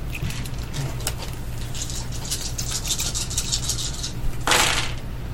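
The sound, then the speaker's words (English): Six dice being counted out of a dice pool click and clatter repeatedly, a busy run of light taps followed by a louder rattling burst near the end, with no one speaking. “You... are going to lose 6 dice from your pool. Okay. Now that I've counted them out.”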